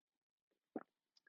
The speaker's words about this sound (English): Take a quick sip of my coffee.